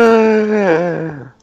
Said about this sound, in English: The hell was that? Me gasping.